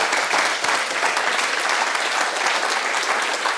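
audience clapping

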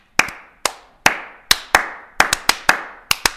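group clapping hands

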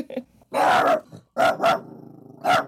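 dog barking aggressively

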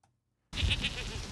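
goat bleating

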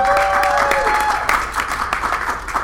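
applause

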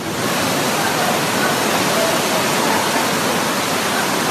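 rushing floodwater

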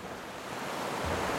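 ocean waves and surf

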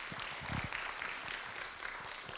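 audience applause

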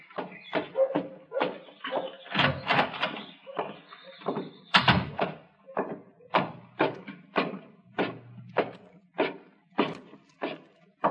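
door opening

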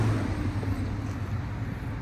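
road traffic passing by

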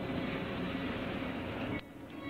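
train

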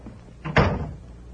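door being closed

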